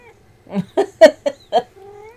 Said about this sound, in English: My goodness, this is a talkative cat. He's being super, super lovey.